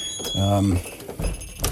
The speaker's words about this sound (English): Let's see if this door is unlocked. Yeah, that's great. Oh, we can get in.